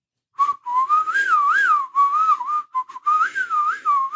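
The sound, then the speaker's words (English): Someone whistles a quick, bending melody meant to mimic a heavy metal guitar riff, mixing blowing and sucking, fairly loud, running in short phrases with brief gaps and no talking. “Here's me whistling it now.”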